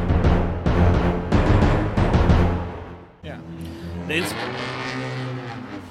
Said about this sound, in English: You know, I have to edit these car noises out.